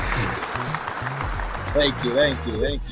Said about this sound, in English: There was supposed to be a round of applause, but we're a little too excited because we were able to get you here on the show.